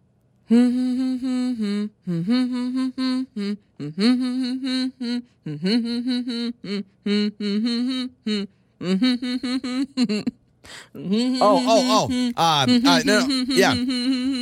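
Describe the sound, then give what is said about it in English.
A person hums a song melody for others to guess the song, sustained pitched notes in phrases with short breaks, growing louder and more animated toward the end. “I have to guess what it is just based on the hums.”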